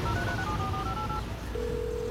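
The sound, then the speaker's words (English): A quick run of electronic touch-tone beeps as a phone number is dialled by voice command, followed by a steady ringing tone, clear over a low background rumble. “Phone, call”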